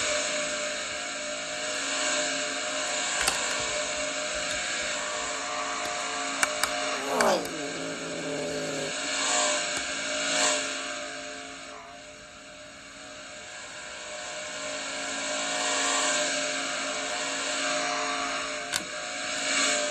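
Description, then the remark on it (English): Dirt track race cars roar continuously with a loud, droning engine whine as they come off turn four battling for the race lead with four laps to go; one car sweeps past around the middle with a falling pitch. No one speaks. “coming just off of turn four. Or that's the battle for the race lead. Coming to four laps to go.”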